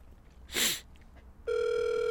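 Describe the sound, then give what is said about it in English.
A brief burst of noise, then a steady, loud phone ringing tone starts and holds unbroken to the end as a phone call is placed, with no one talking. “I'll get him on the phone right now. I'm going to call him.”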